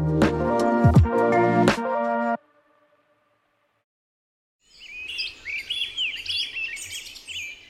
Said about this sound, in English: To human ears, bird songs are beautiful background noise.